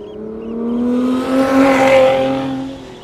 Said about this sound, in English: So what you can hear now is the latest car, the last internal combustion engine you'll ever hear in a Lotus.